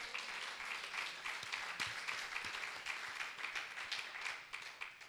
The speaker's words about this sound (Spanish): ¿Cuántos pueden dar un aplauso a Dios?